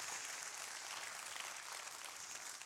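A thin, quiet patter of audience clapping continues steadily for a few seconds, with no one speaking over it.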